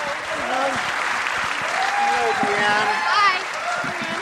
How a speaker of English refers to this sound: Bring her out here now with a big round of applause.